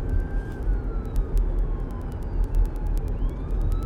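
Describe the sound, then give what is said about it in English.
An ambulance siren wails faintly, its pitch sliding as it comes by, over a steady low rumble of street traffic. No one speaks. “And there's an ambulance coming by.”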